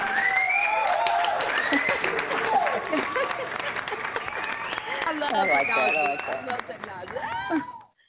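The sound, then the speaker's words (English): Steady applause with dense, rapid clapping from a group, mixed with excited whoops and cheering voices, loud throughout before cutting off abruptly at the end. “Y'all know we got to give an applause.”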